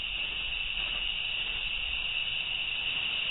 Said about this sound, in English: That was the cricket. You got crickets. We gave you crickets.